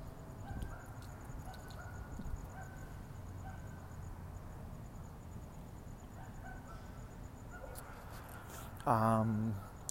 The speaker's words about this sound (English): Is that a goose I hear? Sounds like a goose. Can't tell for sure. Oh, there might be a barking dog. Oh, that is a barking dog. Barking dog sounds like a goose.